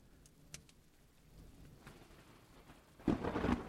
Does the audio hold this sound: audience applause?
no